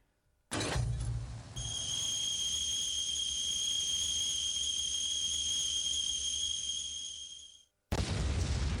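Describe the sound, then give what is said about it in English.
An explosion sound effect: a sudden booming blast gives way to a long, steady high-pitched whistle like a boiling kettle, layered over a low rumble and hiss. It cuts out, then another loud burst starts. “It's a good explosion.”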